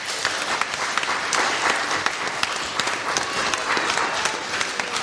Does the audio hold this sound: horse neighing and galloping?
no